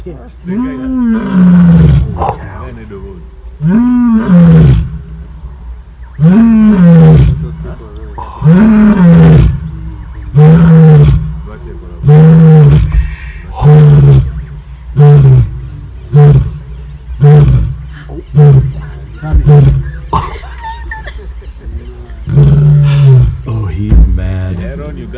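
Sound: lion roaring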